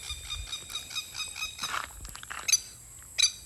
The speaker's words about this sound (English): I'm outdoors, so you can hear the birds on the background.